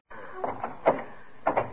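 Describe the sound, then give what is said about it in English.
A locked office door is rattled repeatedly against its lock, giving a handful of sharp, irregular clunks and jiggles, with a brief pause between two bursts of shaking. “this door to Mr. Waterbury's office. I can't open it.”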